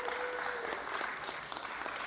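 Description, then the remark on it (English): An audience claps for a worship band steadily throughout, a dense crackle of many hands at an even, fairly strong level, with a faint sustained tone audible early on. “worship band a round of applause, please.”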